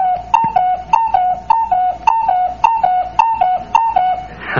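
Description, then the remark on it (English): A cuckoo clock, its hands just pushed around to 8 o'clock, strikes eight. Its whistly two-note "cuck-oo" call repeats eight times in a steady, even rhythm, clear and fairly loud with no voices over it. “I'll just shove the hands around here to 8 o'clock and... listen.”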